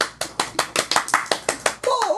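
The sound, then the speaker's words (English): Children clap in a quick, steady rhythm, about ten sharp, bright claps in under two seconds, before a voice starts speaking at the end. “Kids, applaud if you thought it was just right.”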